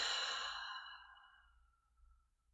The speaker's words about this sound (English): Again, breathing in through your nose. Exhale through your mouth.